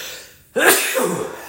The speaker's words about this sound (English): Sneezing's cool though. Maybe I'll do a pod on that one day.